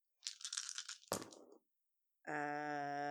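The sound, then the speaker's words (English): Five twenty-sided dice clatter and rattle across a hard surface for about a second, ending in a sharp knock and a brief settling rattle, followed after a pause by a steady, bright electronic tone. “Yeah, I'll roll more dice. Give me. Roll 5d20, please.”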